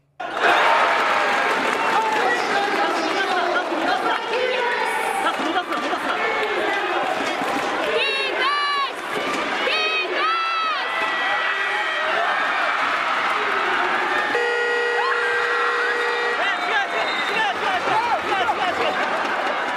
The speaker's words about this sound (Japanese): このブザー、試合終了のブザーを伝える音なんですが、 はいはいはい、 実はこの時何が起こったかというと、うん、試合終了のブザーが鳴ると同時に信州の選手がスリーポイントシュートを打ったんです、